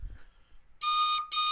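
train whistle sound effect

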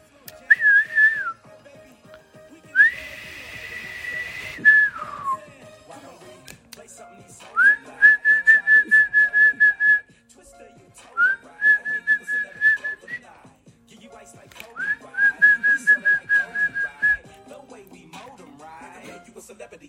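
person whistling a tune

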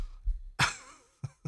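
fake cough

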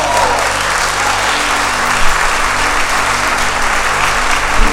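audience applauding

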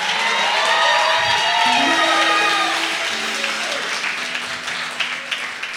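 audience clapping and cheering

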